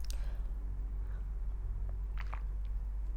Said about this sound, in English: Speaking of which, I'm gonna take a sip of water.